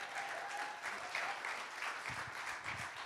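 A crowd applauds steadily, many hands clapping in a dense, continuous patter that holds at an even level throughout, with no voices standing out.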